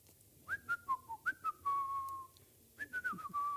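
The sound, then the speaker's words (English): A person whistles a quick run of short chirpy notes, then a long sliding tone, mimicking birdsong. The whistling is clear, with no talking. “And so the birds, that's how they live. No wonder they're always whistling.”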